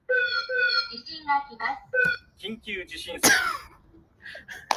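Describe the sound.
A voice imitates a Japanese tsunami warning siren, sounding out a string of short, tonal, sing-song notes that step up and down in pitch, broken by a harsh cough-like burst midway.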